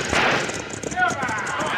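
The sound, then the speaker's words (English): A loud, dense burst of gunfire aimed at a stagecoach driver, several shots cracking in rapid, uneven succession over a steady rumble, with faint voices mixed in underneath. “Open up on that driver. That'll stop him.”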